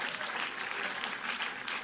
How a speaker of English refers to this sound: Would you clap your hands unto the Lord this morning?